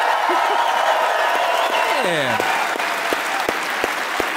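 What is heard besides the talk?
audience applause and cheering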